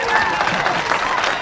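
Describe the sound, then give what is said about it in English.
A crowd breaks into steady applause for Tyler Meigs, the man who cleaned up Coffin, Arizona: dense overlapping claps forming a loud, continuous wash, with a few cheering voices and whistles threading through. “Now, let's give a big round of applause for the man who single-handedly cleaned up Coffin, Arizona, Tyler Meigs!”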